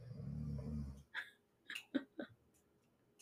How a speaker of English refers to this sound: And was that water running or is her? No, it's the dog snoring.